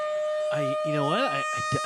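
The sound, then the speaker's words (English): A voice mimics a siren with two wavering, rising-and-falling wails over a steady electronic tone, followed by a few short vocal sounds. “Well, do you hear sirens”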